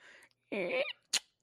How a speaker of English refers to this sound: I just locked a door. Okay, that's the car door.